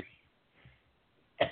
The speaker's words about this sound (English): Excuse me, why am I having a coughing attack?